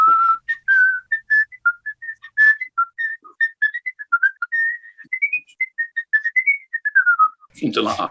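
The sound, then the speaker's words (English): A person whistles a lively melody from the last movement of a classical trumpet concerto, quick articulated notes rising and falling in a clear, solo tone for several seconds, ending with a brief burst of noise. “in the first round in the classical section, I did the last movement of Haydn's Trumpet Concerto”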